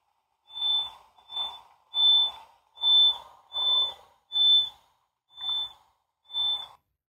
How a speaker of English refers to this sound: So it sounds to me, it sounds like someone playing like a penny whistle. It's a very sweet sound, a very cute sound. Well, and I should clarify too. So that's their echolocation pulse, but slowed way down for us to be able to hear it.